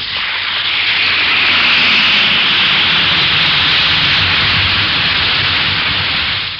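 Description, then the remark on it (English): An Alka-Seltzer tablet fizzes in water, a dense, steady crackling hiss that holds at an even, fairly loud level for several seconds with no voices. “Listen to it fizz.”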